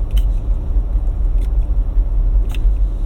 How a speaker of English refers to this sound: Sorry, I had to squirt my nose. Stopped up. I apologize for the sniffles.